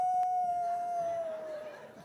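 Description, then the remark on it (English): A single voice mimics a wolf pack howling at the moon, holding one long, steady, slightly falling tone for about two seconds, fairly loud, fading a little at the end. “The wolf pack get together, look up at the moon, and said, ow!”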